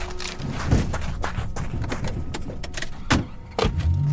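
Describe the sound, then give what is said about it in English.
People climb back into a car: shuffling and rustling, a few heavy thumps like doors and seats, a brief jingle of keys, all fairly loud against a low hum. “I don't think we should have come this way. I think you're right. Get back in the car.”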